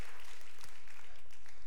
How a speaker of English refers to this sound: You can clap. That's a good thing to clap about.